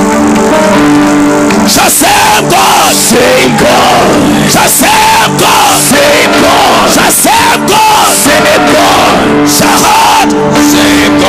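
A loud, dense church audience cheering and yelling together, with rising and falling shouted voices and clapping mixed into the continuous roar.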